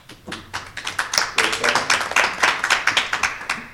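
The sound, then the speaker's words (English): A burst of applause from a small group at a meeting, given when a second to a motion is called for, rapid irregular claps building and holding steady for several seconds, fairly loud, with faint voices underneath. “I heard applause, but no second.”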